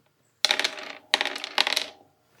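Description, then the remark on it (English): Four dice clatter and rattle across a hard surface in three quick bursts of bright clicking impacts that settle and die away, with no voices. “And I'm gonna roll 4 dice for this.”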